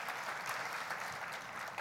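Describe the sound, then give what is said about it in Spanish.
Steady audience applause given to the Lord for a person, a dense crowd of hands clapping together at an even, sustained level with no gaps, fairly loud and filling the whole moment without any talking. “Sí, podemos darle un aplauso fuerte al Señor por esta persona.”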